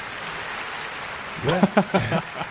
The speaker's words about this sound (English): Can we get some applause for Tom? Can we get a little applause for Tom?